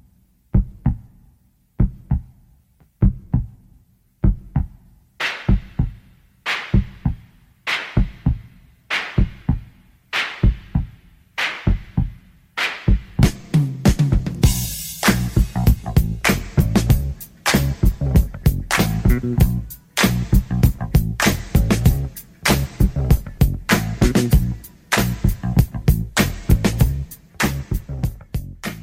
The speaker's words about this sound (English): This is … …, … club version.